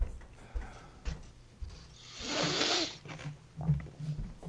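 Muffled dogs barking upstairs: a string of dull, low, thudding barks at a steady pace, interrupted midway by a brief burst of rustling noise, with no one talking.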